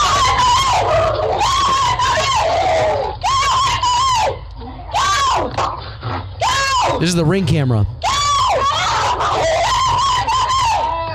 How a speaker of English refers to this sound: It is disturbing. Yeah, and I think most of those noises are the cat, right? Or the bobcat? Yeah. So you've got the bobcat who, I mean, it looked like the bobcat maybe tackled the dog a couple times and maybe got a couple good bites in or scratches.